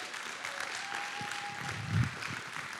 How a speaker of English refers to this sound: And he not only, yeah, give him a great round of applause.